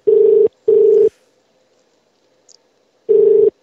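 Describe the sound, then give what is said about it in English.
A telephone ringing tone on a call to a restaurant in Australia: a steady low buzzing tone in a quick double burst, a pause of about two seconds, then the next burst starting. Loud, clear and alone, with no talking. “I mean, that would piss me off to hear a ring phone.”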